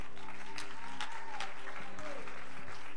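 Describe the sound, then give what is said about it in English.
A church audience at Mount Calvary in West Dayton claps hands for Jesus in steady, dense applause, with crowd noise and a sustained low hum or organ tone underneath. “Let's clap our hands for the one that saved our souls.”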